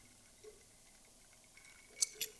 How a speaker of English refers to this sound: So let me take a sip right here.